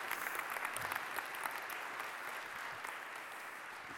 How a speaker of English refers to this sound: Bless you. But come on, just cheer. Cheer them on.